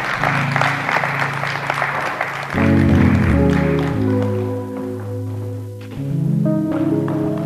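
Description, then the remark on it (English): An audience applauds the praise team with steady, dense clapping that carries on for several seconds, while sustained keyboard or organ chords play underneath and swell partway through. “Give the praise team a hand clap of praise.”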